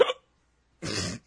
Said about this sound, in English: I can't believe I got the fucking hiccups during a podcast. I'm not even that drunk.